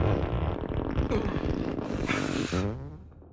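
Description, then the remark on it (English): A loud, raspy tearing sound like a long, sputtering fart, made by ripping perforated leather. It rattles on for about three seconds, then warbles and trails off at the end. “They were ripping a perforated piece of leather.”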